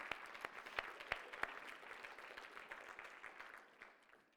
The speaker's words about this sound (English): Let's give the Lord a clap offering for that powerful women's retreat.